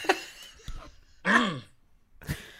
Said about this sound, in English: I'm not coughing to assert my dominance. It's that time of year where I cough constantly.